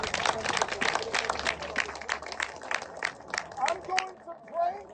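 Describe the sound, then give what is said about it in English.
An audience claps their hands in a dense, irregular burst of sharp overlapping claps that gradually thins out, with voices rising toward the end. “Can you clap your hands if you believe there's hope in this city?”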